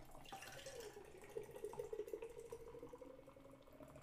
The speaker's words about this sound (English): So we take it, you got to flip the can 3 times. So 1, 2, 3. And then pour hard.